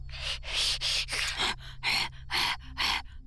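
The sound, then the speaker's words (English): Heavy, rapid panting from a wolfos, a wolf-like beast chasing someone, about eight harsh breaths in a quick steady rhythm, fairly loud over a low constant hum. “he'd hardly taken his first few steps when the wolfos panting was on his neck.”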